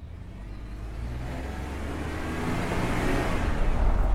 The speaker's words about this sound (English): Hey, look. That's his car over there.